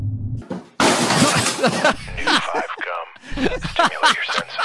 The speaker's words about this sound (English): basically a man just headbutted a door. We not just headbutted, he went flying left through a door. We head first.